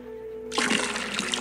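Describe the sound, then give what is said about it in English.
After a brief quiet hum, water is suddenly poured out of a container in a steady, rushing splash that stays loud until the end. “And in this case, a container for the water, which you can think of as being my life force.”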